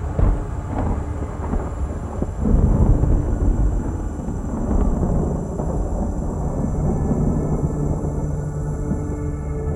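Deep, rolling thunder rumbles continuously, swelling into a louder crack early on before settling into a sustained low growl, with a soft hiss of rain beginning underneath. No voices.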